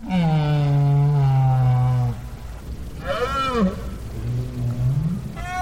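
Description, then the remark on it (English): Right whale calls recorded underwater at the Bay of Fundy, where Maine meets Canada: a long, low, harmonic moan, then several shorter swooping, rising-and-falling calls over a steady hiss of water noise, with no voices. “50 years later, Parks made another recording of right whales at the Bay of Fundy, where Maine meets Canada.”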